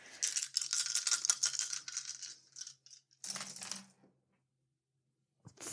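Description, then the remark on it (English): Dice rattle sharply in a cup or hand for a few seconds, then clatter out in a shorter burst, with one last faint click near the end. Fairly loud, no talking. “So, I am going to say that the difficulty here is going to be 2 purple dice and 1 black die.”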